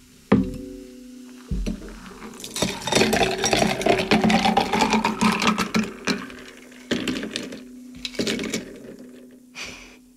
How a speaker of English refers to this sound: And because I want to keep my drink cold, I'm not going to strain it. I'm just going to pour it.